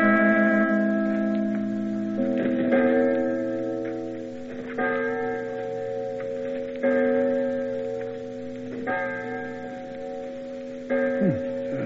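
A clock ticks in a slow, steady rhythm, with resonant bell-like chime tones ringing and overlapping throughout. No one speaks.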